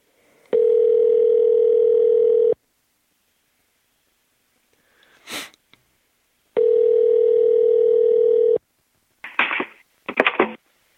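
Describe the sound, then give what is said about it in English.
A steady telephone dial tone sounds loudly for about two seconds, stops, then returns for another two seconds, with a brief whoosh and some clicks and rustles of handling in between and after. “Put this doggone phone to my ear.”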